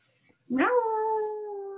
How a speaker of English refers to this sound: Oh, cat howl. Like, why won't you pay attention to me? Play with me.